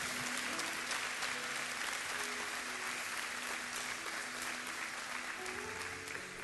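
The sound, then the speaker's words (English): An audience applauds people who are relocating, steadily throughout, a dense, sustained wash of clapping with no pauses, fairly loud and even in level, with a faint murmur of voices underneath. “And I told them this morning, but I know you'll want to tell them with applause.”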